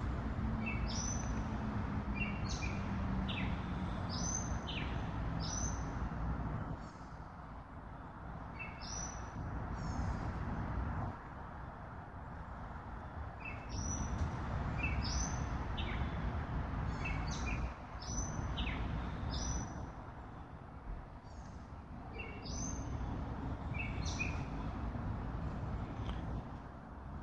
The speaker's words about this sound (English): Allowing the voice of the birds to ride with each breath. and connect you with the present moment.